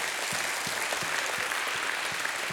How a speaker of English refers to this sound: Someone give God a hand clap of praise.